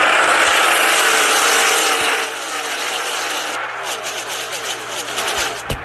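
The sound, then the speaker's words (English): A loud, dense roar of many stock car engines thundering together at the start of the Kansas race, the start of the round of eight, swelling and shifting as the pack accelerates past, with no voices heard. “Getting ready for the start of the Kansas race, the start of the round of eight.”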